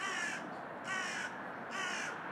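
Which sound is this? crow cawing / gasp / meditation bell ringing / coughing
crow cawing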